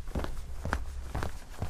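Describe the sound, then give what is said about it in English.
Footsteps of the master of the house pacing back and forth at a slow, steady rhythm, about four dull thuds with an even gap between each, set over a low rumble with no talking. “And he sees the master of the house pacing back and forth.”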